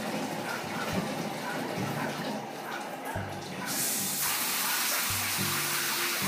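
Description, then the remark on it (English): Steady rushing roar of a small waterfall, broad and hissy, swelling louder about halfway through as if drawing nearer, with brief low murmurs underneath. “Get a little bit closer to that waterfall.”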